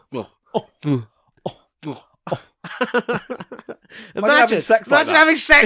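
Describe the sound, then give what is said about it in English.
A voice makes a string of short, voiced cough-like bursts with the mouth, spaced apart at first, then quickening into a denser, louder run of rapid hacking sounds, an imitated coughing fit. “It's coughing.”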